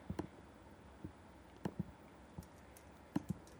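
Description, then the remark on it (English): Soft, irregular typing on a computer keyboard as someone looks something up: scattered light clicks and taps in small bursts, a few keystrokes at a time with brief pauses, quiet against a faint background hiss. “You're typing Eric right now.”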